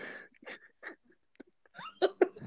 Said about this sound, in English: I think he's just coughing up on his phlegm. Damn. That fool uses the Juul or what? I don't know. He's just phlegmy throat. He's a smoker for sure, but he's always breathed like that, I feel like.